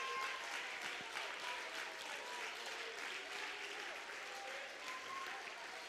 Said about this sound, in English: Let's take a moment and thank God for that joy right now. Somebody clap your hands and praise Him right now.